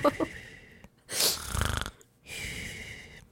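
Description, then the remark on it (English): A person mimics snoring with their voice: a raspy inhaled snort followed by a rattling, buzzy exhale, then a softer airy breath, all fairly loud with no talking. “does snore”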